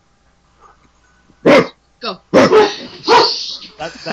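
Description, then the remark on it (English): A person imitates a dog, letting out a quick series of about four loud barking yelps at an uneven pace as a countdown, with a brief spoken word mixed in. “Oh, dogs do the countdown.”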